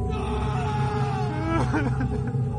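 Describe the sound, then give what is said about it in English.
A man grieving the loss of his wife lets out a drawn-out, anguished roar with a low, groaning tone that holds steady and loud, then wavers and bends in pitch toward the end, with no talking over it. “He screamed at the walls and paced the floors, and neighboring towns could hear his roar.”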